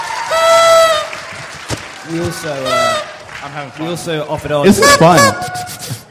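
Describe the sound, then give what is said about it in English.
An audience blows birthday party horns for Harry Potter in an overlapping jumble of nasal, honking toots, some long and wavering, with a burst of louder blasts near the end and scattered voices underneath. “Toot our birthday horns for Harry Potter, everybody.”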